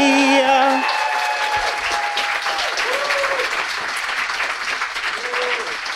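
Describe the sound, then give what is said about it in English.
A crowd claps steadily in a dense, sustained wash of applause at an East Coast book launch for the book Virology, with a few whistles and faint cheers rising over it near the start and scattered through. “Just revel in the applause, baby.”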